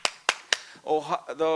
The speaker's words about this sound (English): Omaha World Herald. I always clap because these guys did it right.